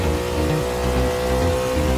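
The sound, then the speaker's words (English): An engine revs hard under rapid acceleration, a loud, steady growl with layered harmonic tones that climb slightly in pitch over two seconds. No voices. “The thrill of rapid acceleration and a revved up engine working together to go fast.”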